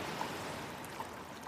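A steady wash of moving water and surf fills a sea cave, a continuous hissing roar with faint echoing drips. No one speaks.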